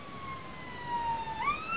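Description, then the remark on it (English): An ambulance siren wails as the ambulance goes past, its steady tone sliding slightly lower before jumping up in pitch, over a low background rumble. “Well, there's an ambulance going past.”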